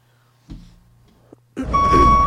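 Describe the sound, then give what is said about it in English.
After a few faint thumps, a truck horn blares in one loud, sustained honk with a steady, bright tone that holds until the end. No one speaks. “Honk, honk. Nope. There it is.”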